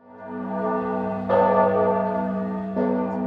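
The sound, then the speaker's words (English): Richmond's church bells ring out loudly in May 1862 with deep, sustained tones, two fresh strikes landing over the lingering hum of earlier peals, with no voices present. “Hell, 100,000 are so close, they can hear Richmond's church bells.”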